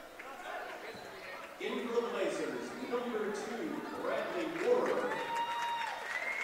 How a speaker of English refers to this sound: Brad Moore in the game as Russ Vanderpool comes out to a nice round of applause.